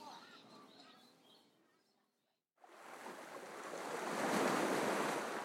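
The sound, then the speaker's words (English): Ocean waves wash against a windy shore on a cold, wet winter beach, a softer hiss fading to near silence before a broad wave surges in and roars steadily, with gusty wind noise on the microphone. “Cold and windy and wet, we are alone with the shoreline. The ocean gulps and whispers, and even the gulls are quiet.”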